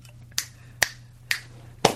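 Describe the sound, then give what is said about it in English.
Three crisp finger snaps at an even pace, then a broader, fuller smack of a slap on the buttocks, all over a low steady hum with no talking. “That was three snaps and a butt slap, I believe.”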